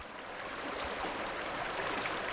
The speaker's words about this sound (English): In a high basin below the Continental Divide, where a snow-fed creek flows through low sagebrush,